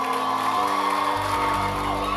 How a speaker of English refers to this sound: That hand clap and that shout was to welcome me.